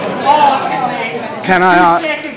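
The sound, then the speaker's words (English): A council meeting audience in the chamber chatters over one another in a steady murmur, then a single loud raised voice shouts for about half a second over the babble before it settles back. “I'm hearing shouting, and I don't really want to hear that, because if that happens and the person concerned will be asked to leave the chamber”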